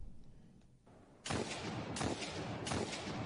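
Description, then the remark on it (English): A quiet lead-in gives way to three loud, booming gunshots from the Hawk Moon hand cannon in a video game, spaced roughly evenly, each with a sharp crack and a rumbling tail. “Oh, hand cannon.”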